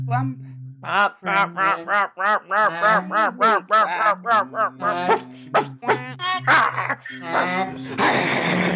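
A duck quacks loudly and close by in a rapid, steady run of harsh calls lasting several seconds, ending in a burst of rough noise.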